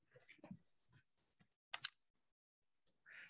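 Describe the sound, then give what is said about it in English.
Crisp clicks of typing on a computer keyboard, a handful of irregular keystrokes with short pauses between them and no one speaking. “You're using the keyboard, so keypad, yeah?”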